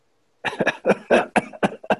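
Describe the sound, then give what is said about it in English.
A man gives a loud run of harsh, rasping coughs as a laugh, about eight rough bursts in quick succession with brief gaps, starting after a moment of silence, with a wheezy, almost laugh-like quality. “Just coughing, rasping, laugh to him.”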